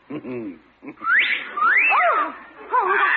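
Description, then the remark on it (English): Mr. Peavy's parrot, left on the porch, whistles at a woman: a string of loud, swooping notes that rise and fall, after a brief low, throaty vocal sound at the start. “He's whistling at the gal.”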